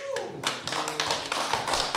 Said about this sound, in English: Yeah, I got more of a clap that time.